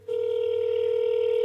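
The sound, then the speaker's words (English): A phone call's ringback tone while calling a pastor: one steady, loud electronic tone that starts abruptly and holds evenly throughout, with no voices over it. “Here's another ring.”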